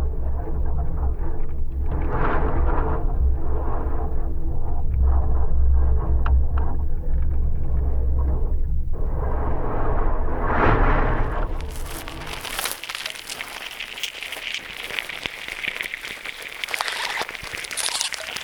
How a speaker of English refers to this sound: So this is a cholla cactus with a contact microphone attached to it on a windy day, and you're hearing the wind sort of whistling through the holes in this dead cactus.